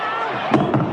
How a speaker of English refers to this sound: He's dropped the mic. He's walked off.